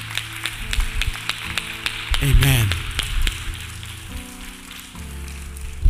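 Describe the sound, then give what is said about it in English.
A crowd claps hands to the Lord in a dense, irregular patter of sharp slaps that runs through the whole stretch. Sustained musical tones play underneath, and a voice briefly speaks partway through. “Once again, clap your hands to the Lord.”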